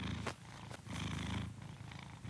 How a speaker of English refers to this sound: Just a nice wholesome purr for you.